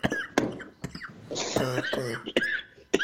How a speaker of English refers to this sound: the way I'm coughing, I might have that bitch now.